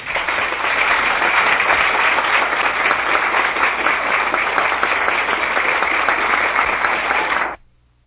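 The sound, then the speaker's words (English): Steady, dense applause from an audience, loud and sustained for about seven seconds, then cutting off abruptly. Countless overlapping claps blend into a continuous roar with no talking. “Thank you very kindly for your heartwarming applause.”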